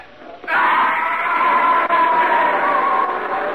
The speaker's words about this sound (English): was bringing up the rear when I heard him yell.